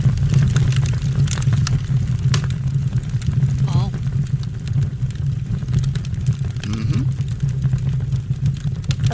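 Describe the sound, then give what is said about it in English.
A fireplace fire crackles steadily over a deep, continuous low roar, with frequent sharp pops and snaps scattered irregularly throughout. “Oh, a fire. A fireplace.”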